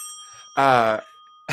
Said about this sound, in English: Bell.